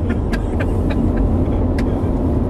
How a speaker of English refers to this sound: Oh, nope. Hazard lights are off and they're getting back on the road. Looks like it's a false alarm, ladies and gentlemen. He's back on. He's back on the road.